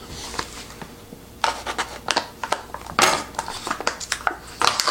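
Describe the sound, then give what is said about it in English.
Irregular scraping and sharp crackling as a blade cuts into stuck plastic packaging on a ready-to-serve food cup, with bursts of louder crinkles toward the end and no voices. “That was really, really stuck on there. Oh man, I'm about to cut this.”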